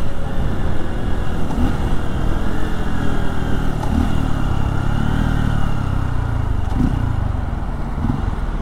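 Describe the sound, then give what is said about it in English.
A motorcycle without ABS drones steadily as it rides through busy traffic on the way home from work, with wind rumble and the pitch rising and falling slightly. Surrounding traffic blends into the continuous roar. No one speaks. “Well, anyway, we are nearing my work, so give me just 2 seconds, and I'll show you what the ride home is like, and we'll wander through some more busy traffic.”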